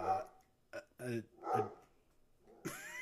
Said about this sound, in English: a fucking dog. It's okay, he's a good boy.